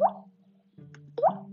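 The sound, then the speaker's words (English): Two clear water droplets plop into water about a second apart, each a short, bright, rising bloop with a faint lingering ring, fairly quiet, with no talking. “It is a drop of a rock on water. It's a water droplet.”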